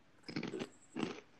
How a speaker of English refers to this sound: I can hear more of the ruffle of the bag. Do y'all really not hear me chewing, bro? Yeah. Really? Good. Damn, because I'm munching.